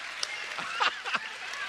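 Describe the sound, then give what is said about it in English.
Scattered, fairly quiet clapping from an audience of junior high students responding to an answer about worship, a few hands patting unevenly over a soft murmur, with slightly louder claps near the middle. “Oh, we got some claps from that one.”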